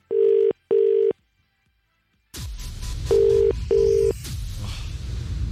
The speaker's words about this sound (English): I'm just going to let that ring out there. If that is your call, phone, you've just had a missed call from me.